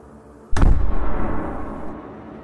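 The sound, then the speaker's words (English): A single massive, booming slam of heavy double doors shutting hits suddenly after a quiet moment, its deep thud ringing out and fading slowly. “And as it touches that doorknob, there is a massive thump as the double doors that you entered slam shut.”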